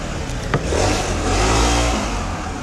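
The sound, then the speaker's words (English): A motorcycle engine revs loudly, its pitch climbing and falling in a throaty roar, with a brief sharp click near the start and no voices. “I'm not a big fan of motorcycles, I have to say.”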